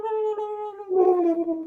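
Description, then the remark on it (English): A person mimics a turkey call with a sustained, steady mid-pitched vocal tone that turns rough and warbly, sliding slightly downward before ending, lasting under two seconds with no other talk. “I don't think that's sound turkeys make. No, they go like.”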